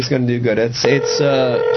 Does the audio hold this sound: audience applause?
no